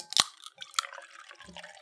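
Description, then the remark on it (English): Lukewarm cola is poured out and fizzes softly, a couple of sharp splashy bursts at the start giving way to a steady, faint foamy hiss and gurgle, with no talking. “I'll crack open a Rio Fago. I'll pour it.”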